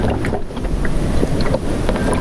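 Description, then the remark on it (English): Water from a water bottle jug gurgles and bubbles steadily into the reservoir of a water cooler, with scattered small pops over a constant rushing hiss. Moderately loud, with no voices. “And the water, it's now, you can probably hear it bubbling into the reservoir.”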